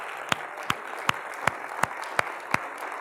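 An audience applauds: a steady wash of many hands clapping, with sharper claps cutting through at an even, regular beat. No one speaks during the applause.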